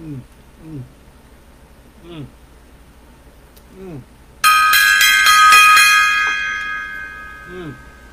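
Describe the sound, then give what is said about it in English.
A single loud gong strike rings out abruptly, its shimmering metallic tone sustaining for a few seconds before slowly fading. Brief bits of a voice are audible before the hit. “All right, gong time.”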